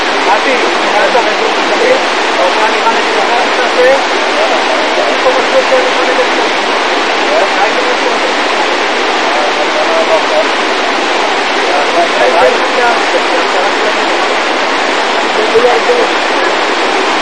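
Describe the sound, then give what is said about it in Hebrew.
A loud, steady rush of falling water from a waterfall fills the whole recording, a dense unbroken roar with no pauses or changes in intensity. “כן, מפל של קודם.”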